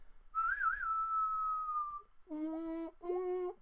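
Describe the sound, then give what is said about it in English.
A person whistles a long, clear note that wavers with vibrato before settling, then two shorter, buzzier voiced tones follow, fairly loud. “I'm like actually really good at whistling.”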